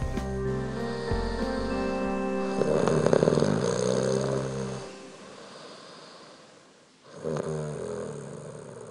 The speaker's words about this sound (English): The funny thing is that you snore too, but I don't mind.